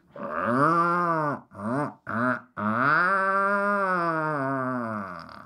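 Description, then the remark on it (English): A puffin's deep, growling call between a mated pair: a drawn-out groaning note, two short clipped bursts, then a long, steady, rasping moan, loud and harmonic with no talking over it. “Later in life, they have a deep growling call. They sound sort of like this.”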